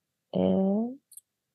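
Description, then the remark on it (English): A short voiced murmur from a person, then a quick, quiet double click like a computer mouse button being pressed and released. “Okay, I'm clicking, creating, opening.”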